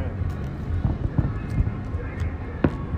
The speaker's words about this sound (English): Bro. Look at that. You don't watch the fireworks? Awesome.